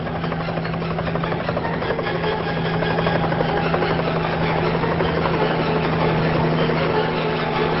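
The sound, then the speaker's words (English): A small helicopter, Astrid's runabout, comes in to land, its rotor chopping in a fast steady pulse over a constant engine whine, loud and sustained throughout with no voices. “Anton and Rod look up at the sound of a small helicopter coming into land.”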